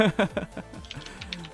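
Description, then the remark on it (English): Furious computer keyboard typing, a rapid patter of light clicks, comes in right after a brief burst of speech and continues moderately quiet. “The furious typing.”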